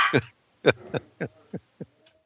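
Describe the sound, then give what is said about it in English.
A dog barks about seven times in a quick, uneven series, each bark fainter than the last, sounding muffled from another room, with no one talking. “The dog is not in the room I'm in, by the way.”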